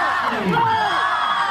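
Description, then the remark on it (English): A crowd at a Missouri high school halftime show cheers and whoops loudly at the grand finale of a roller coaster led by a student, many voices overlapping in swooping rising and falling pitches, a steady roar of excited shouting throughout. “And the crowd goes wild.”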